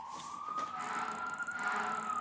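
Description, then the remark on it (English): A fire truck siren in Winnipeg wails steadily, its tone slowly climbing in pitch, with a thin high-pitched whine layered above it. Loud and continuous, with no voices. “Why are those fire trucks always in a fucking hurry?”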